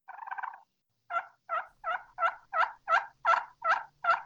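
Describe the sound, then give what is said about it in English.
A turkey hen call made on a game call: a short, soft purring run, a brief pause, then nine evenly spaced yelps in a steady rhythm, clear with no talking. “That sounds like a perfect hen.”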